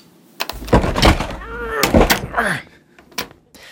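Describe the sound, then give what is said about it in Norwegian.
A wooden cupboard door bangs and thuds repeatedly as someone struggles to force it shut, with creaks, scraping and a few muffled grunts between the close, loud knocks. “Herman løfter den nå kanskje døde, kanskje levende politimannen, som trodde han var Erna Solberg, inn i skapet og strever litt med å lukke døren”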